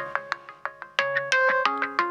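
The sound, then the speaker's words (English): A phone ringtone plays a single loop of bright, plucked electronic notes, starting with quick evenly spaced tones and then rising into a fuller, louder melodic phrase, heard alone. “Giving you one loop. That's all you need. Yeah, so that's familiar. I guess I have my phone on sometimes.”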